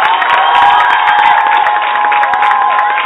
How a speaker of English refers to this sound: Come on, give a round of applause for the people that love y'all.